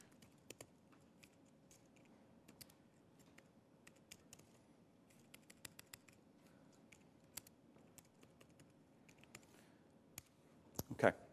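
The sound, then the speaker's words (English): Rapid, irregular clicking of keys on a computer keyboard as someone types Python code, fairly quiet, with bursts of fast typing throughout and a louder cluster of strokes near the end. “See how fast I can type here.”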